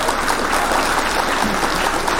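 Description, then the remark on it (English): Steady applause from a crowd, a dense, continuous wash of many hands clapping at an even loudness for a couple of seconds, with no voices standing out. “Hit the clap for you.”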